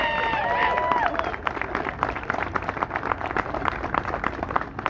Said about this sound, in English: please know for 38 years, these are the people that have brought this to our community. So please help me welcome them to this event and give them a round of applause.